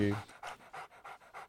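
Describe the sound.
A dog, Mocha, pants in quick, steady breaths, five or six breathy huffs in a row, with a brief voiced sound at the very start.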